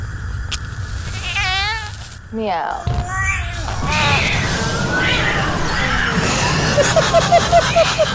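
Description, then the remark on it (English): A voice imitates a cat with several drawn-out, wavering meows, loud, followed by a few shorter mewing cries over a busy, noisy background. “Meow. Yeah. Her and her dozens of cats all perished in the explosion.”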